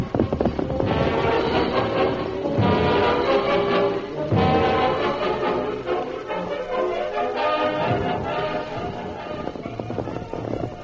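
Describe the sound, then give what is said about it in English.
Steady clip-clopping of horse hooves as Tonto and Joe Young ride toward the camp in the hills outside the little town of Leeton, continuous and fairly loud for the whole stretch, blended with a dense layer of sustained tonal sound and no talking. “Tonto and Joe Young rode for about 2 hours.”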